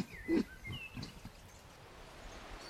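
A quick burst of low, grunting snorts from pigs rooting in a field as they scamper off, loudest at the start and then trailing off into softer huffs, with faint outdoor background noise and no talking.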